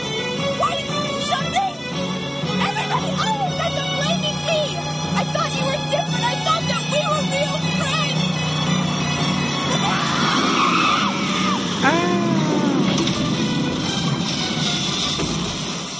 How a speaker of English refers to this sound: The car accident was, like, good. It was really impactful. It was intense. Yeah, the head through the windshield, like, moment was, was a lot. With the ash urn, like, flying.